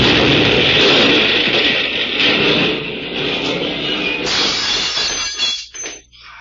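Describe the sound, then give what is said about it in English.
A car blows up in a loud, sustained roaring crash of breaking glass and debris that clatters on for several seconds, then tapers off into scattered tinkling bits. No one speaks. “Oh, it blowed right up in my hands.”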